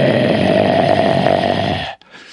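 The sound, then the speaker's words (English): A voice imitates a stag's growl: a loud, rough, rattling drone held steady for about two seconds before cutting off abruptly, with only faint breathy noise after. “And then you'll sometimes hear him just growl like.”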